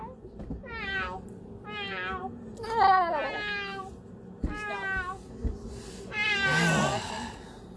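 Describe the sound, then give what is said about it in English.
A person imitates a cat, sounding like Gary, letting out about five drawn-out, wavering meows in a row, fairly loud, with a low hum underneath. “Okay, now you sound like Gary. Meow. Meow. Meow.”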